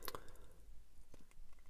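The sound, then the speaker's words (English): Paper pages being turned, two quick crisp rustles about a second apart with soft crinkling in between, fairly faint and with no voices. “Forgive the sound of pages turning.”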